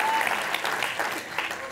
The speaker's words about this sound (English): Everybody give God a clap and a shout of praise. Come on, if you're saved today.